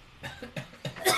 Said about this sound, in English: You start coughing as well.